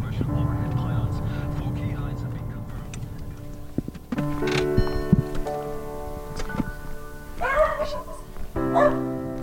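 Lexi the dog barks and yips excitedly several times in greeting as people walk towards a bungalow home in Winegap on a crisp, bright November morning, with short bursts and whimpers in between, over a low rumbling background.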